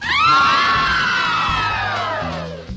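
A loud crowd screams and cheers in one sustained roar, many high voices rising at first and then slowly sliding downward in pitch before fading out after a few seconds.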